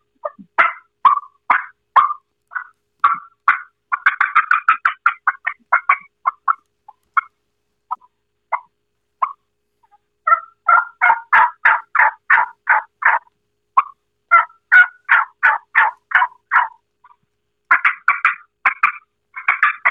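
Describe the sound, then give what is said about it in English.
A morning call sequence on a turkey call with no talking: soft, spaced tree yelps give way to quicker, louder clucks and yelps, ending in a fast, excited fly-down cackle of high, raspy notes. “All right, I'll do a little morning call sequence from a tree call to a fly down cackle on this.”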